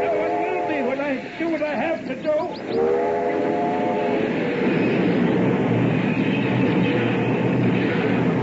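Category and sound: vehicle, train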